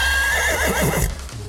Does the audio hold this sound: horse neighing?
yes